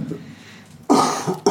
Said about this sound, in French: Termine ta phrase, il y a des gens qui toussent.